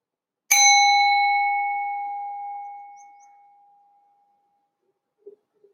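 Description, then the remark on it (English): A single bright strike of a mindfulness bell, rung during a meditation, rings out clearly, its clean tone sustaining and slowly fading over several seconds into near silence, with a couple of faint chirps at the end. “I'm going to ring the mindfulness bell now. The intent is to follow the sound of the bell till it fades out, and then we can open our eyes.”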